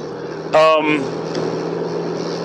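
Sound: car interior noise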